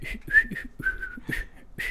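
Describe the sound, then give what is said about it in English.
A person whistles a string of short, bird-like chirps and trills, rising and falling in quick bursts with brief gaps, fairly loud, imitating a bird's call. “I thought since she was a bird, she would go...”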